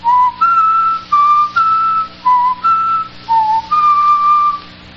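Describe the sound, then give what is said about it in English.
Someone whistles a short melody of about eight distinct, clear notes, each held briefly with small gaps between, fairly loud with no talking: the notes B-E-D-E-E-B-E-A-D of a written musical theme, whistled at the statue of the Venerable Bede. “Let me see if I can whistle those notes written in the musical theme.”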